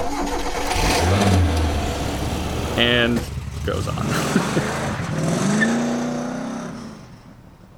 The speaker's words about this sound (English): And as Muhammad's truck, or as Muhammad's car trundles away, we cut to the super secret cottage deep in the city park.